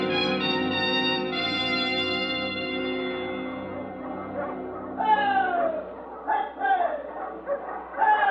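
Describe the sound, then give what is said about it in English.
An arriving sled dog team, led by a big husky with a white star, barks and yips, a long drawn-out whining chorus giving way to a run of sharp, excited yelps and barks that come in quick, uneven bursts. “You look dog team. Lead dog.”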